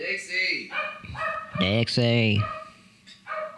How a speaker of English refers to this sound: Can we hear this dog barking? The dog that never stops? Probably.